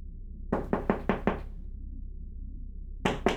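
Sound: knocking on a door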